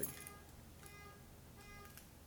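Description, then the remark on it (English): Faint metallic jingling of keys in a few short, rustling bursts as keys are tugged out of a pants pocket, with no one speaking. “Sorry, I cannot get my keys out of these pants.”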